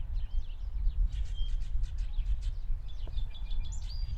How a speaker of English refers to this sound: How many birds do you think are in there? 100?